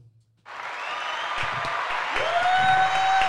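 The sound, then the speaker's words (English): A crowd bursts into loud applause and screaming after a brief quiet moment, a dense roar of clapping with high-pitched shrieks and whistles rising over it and building steadily, as musician and model Aine Bintu is introduced as a guest. “Everybody's screaming.”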